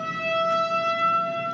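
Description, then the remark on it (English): A tornado siren holds a steady, sustained wailing tone, rich with harmonics and fairly loud, continuing unbroken throughout with no voices present. “That is a tornado siren, people.”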